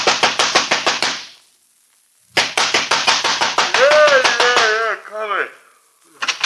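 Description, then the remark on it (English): A fist pounds rapidly on the door of a night-shift cab driver's home in two loud, insistent bursts separated by a short pause, with a brief muffled voice rising over the second round of knocking. “But I did get the address of the driver who worked nights there, and 10 minutes later, I was pounding on his door.”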